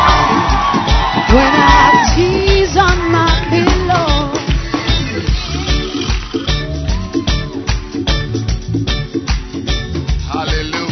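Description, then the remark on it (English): A large church audience erupts in loud cheering, whooping and shouting to welcome Bishop Edwin Morgan Ogo to the pulpit, a dense sustained roar of many voices for the full stretch, with sharp yells rising above the crowd. “Give your loudest shout. You can even jump around if you want.”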